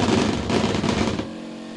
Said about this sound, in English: Oh, the cat's flipping out. What's happening?